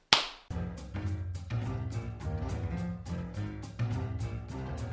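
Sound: hand clap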